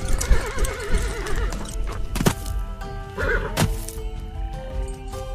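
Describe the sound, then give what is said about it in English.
Horses whinny with wavering, vibrato neighs while hooves clip-clop, punctuated by a couple of sharp hoof strikes; no one speaks. “Just dismount your horses.”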